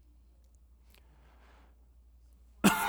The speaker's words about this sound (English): Sorry, I coughed at the wrong time.